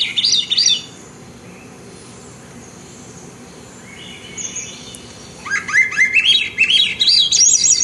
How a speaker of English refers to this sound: Let's take a listen here to, we're going to take a listen to the Swainson's thrush, which is a very beautiful sound.